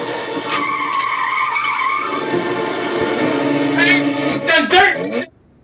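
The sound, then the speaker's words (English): Car tires squeal loudly and continuously on snow and dirt for about five seconds during a movie car chase, with sustained tonal screeching over engine rumble, ending in a few sharp bursts before cutting off abruptly. “It's all snow and dirt, and all the tires squeal.”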